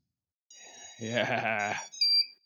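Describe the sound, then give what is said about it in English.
Motor startup beeps as a device is powered on with a 2-amp current limit, which kicks in during the beeps: a steady high electronic tone, then a louder buzzy, harmonic tone for about a second, followed by a short, sharp higher beep. “Wait, current limit kicked in, just as it was doing the motor beeps.”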